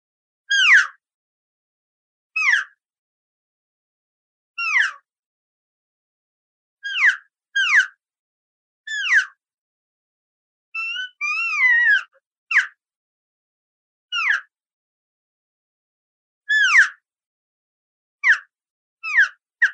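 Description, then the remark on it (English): A FlexMark elk call being blown: a series of about a dozen short, high, squealing mews, each sliding downward, with a brief warbling run partway through. The calls are loud, with silence between them and no talking. “But so here's just a little flavor of what you can do with this FlexMark elk call.”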